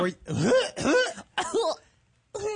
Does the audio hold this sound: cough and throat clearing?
yes